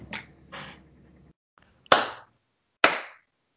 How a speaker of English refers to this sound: Slow clap. I like it.